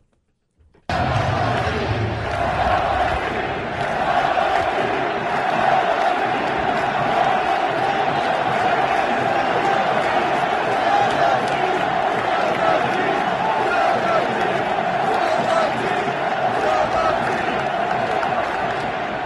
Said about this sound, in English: Can we get the one with just the fans chanting from the stands? See if you can make out what they're saying. This is right before the first pitch.